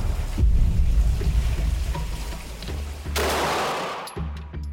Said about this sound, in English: And at the Kafue National Park, there were doubts, too, from the moment the gunshot rang out early that October morning. It's a loud boom.